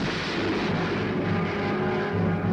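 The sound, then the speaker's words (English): A massive atomic bomb explosion, the Soviet Union's first atomic bomb test, rising miles into the air; its deep, continuous roar rolls on without letup, a dense low rumble with a steady, heavy loudness throughout and no voices. “Miles into the air rises the giant shape of the now historic explosion.”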